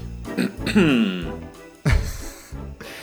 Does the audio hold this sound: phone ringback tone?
no